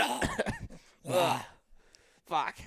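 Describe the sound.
Three harsh bursts of coughing and choking, strained and voiced with a honking, gagging quality, separated by short pauses, from a person doing goose-calling exercises.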